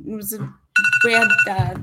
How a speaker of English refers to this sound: Sorry about that. That's all right. It's actually my alarm to snooze to come and talk to you.